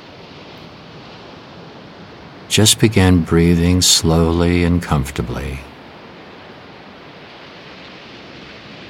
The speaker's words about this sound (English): Experience the sound of the ocean waves and feel yourself there.